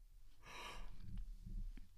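A yawn: a breathy, airy intake swelling for about half a second, then trailing into a low, drawn-out voiced groan that fades near the end.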